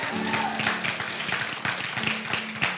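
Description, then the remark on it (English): An audience in West Virginia applauds with a dense, steady patter of many hands clapping. The clapping is moderate and fairly even, without building to a roar, and runs for about three seconds. “Come on, I thought I'd get better applause from West Virginia than that.”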